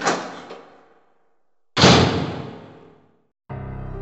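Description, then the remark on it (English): A side door is flung open with a loud wooden bang that rings out and fades, followed by a second heavy bang, then a steady low droning tone begins. No one speaks. “Right away, we spot a side door and we rush towards it. Flinging it open, we enter the room on the other side.”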